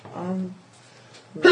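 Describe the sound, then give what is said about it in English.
A single sneeze: a short voiced, rising intake followed after a pause by a sudden loud, breathy burst at the very end. “Bless you.”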